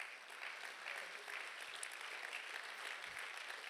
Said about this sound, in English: But this is how, yeah, that's all right. Go ahead and clap.